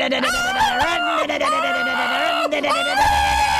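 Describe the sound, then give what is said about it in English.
A person imitates a chainsaw with a loud, continuous buzzing vocal drone that revs up and down in pitch for a few seconds. “Do your chainsaw again.”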